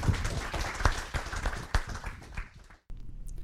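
An audience breaks into applause, a dense, steady patter of many hands clapping together for nearly three seconds before it cuts off abruptly, followed by a quieter hum.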